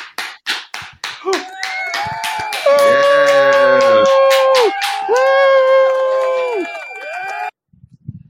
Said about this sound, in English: Congratulations, graduates. Graduates. Hit the applause.